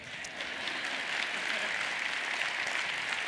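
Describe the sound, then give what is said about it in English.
An audience at a Purim service, after singing Shoshanat Yaakov, bursts into sustained applause, a dense, steady wash of many hands clapping at an even loudness for a few seconds, with no one speaking over it. “They clapped the first service.”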